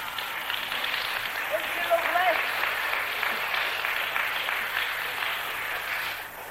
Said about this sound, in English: Give her a clap.